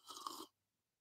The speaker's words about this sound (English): I needed a sip. But, oh, wow, that's good.